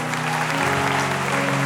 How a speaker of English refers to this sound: Why don't you continue to clap and magnify the Lord together?